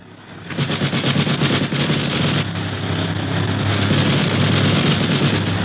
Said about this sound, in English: the boys prepare for trouble, and not a moment too soon, for the other plane opens fire with a machine gun.